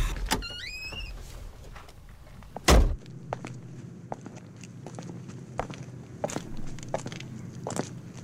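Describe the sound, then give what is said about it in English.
A seatbelt unbuckles with a sharp click and zips back as it retracts inside a car, then a heavy door thunk follows and faint scattered clicks and steps continue in a quiet background. “Oh, the seatbelt.”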